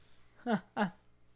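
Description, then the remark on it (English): Two loud cat meows in quick succession, each a short harmonic cry with a bending pitch, separated by a brief pause. “You always got to let him meow.”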